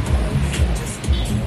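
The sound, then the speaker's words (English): Steady low rumble of engine and road noise from inside a moving, full Mikrolet minibus in Dili, with rattling cabin sounds and faint, indistinct voices in the background. “They're small, noisy and colourful. The Mikrolet is the way to get around in Dili.”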